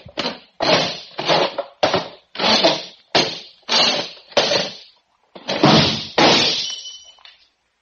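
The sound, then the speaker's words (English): Several short, rough scraping bumps in a steady rhythm as a chair is squirmed over to a table, then a louder crash as a drinking glass is knocked off onto the floor and shatters, its bright ringing trailing off. No one speaks. “I'll squirm my chair over there and knock the glass on the floor to break it.”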